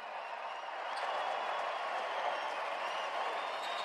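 Steady applause from a large crowd fills a big arena at a Milwaukee basketball game as Joe appears, a dense wash of clapping that holds at an even level throughout, with a faint murmur of voices mixed in.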